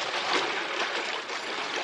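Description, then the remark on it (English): Steady rush of river water flowing past a riverbank, a continuous hiss-like wash with faint gurgling ripples and no voices. “Now let's get back to the riverbank.”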